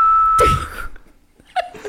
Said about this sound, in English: who just learned to whistle